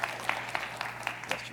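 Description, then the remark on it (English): Soft audience clapping welcoming a speaker at a morning gathering, with sharper claps landing at a steady, even pace over a continuous wash of scattered applause and a low background hum. No one speaks. “Yeah, clapping.”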